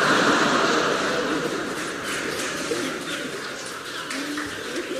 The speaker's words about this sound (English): Hey, look at them pigeons. Pigeons, you idiot, they're gulls.